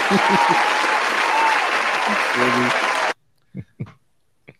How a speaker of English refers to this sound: Shouts word out to me. A round of applause for you, brother. Yeah, thank you.